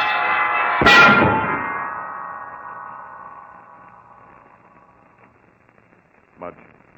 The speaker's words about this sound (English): That heavy bell hurtling downward hit Mudge a solid blow, killed him instantly.